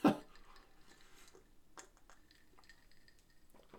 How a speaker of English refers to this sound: I'm going to take another sip. Hopefully this isn't too loud. There's some ice in my cup.